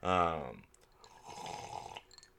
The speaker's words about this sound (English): That was me drinking water. I've been trying to drink more water lately.